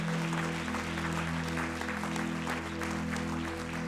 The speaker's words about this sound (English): Clap your hands one more time before you're seated.